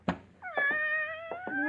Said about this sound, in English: you didn't tell me you had a cat. Oh, didn't I? Well, I have. Just about the most beautiful tortoiseshell cat I've ever seen.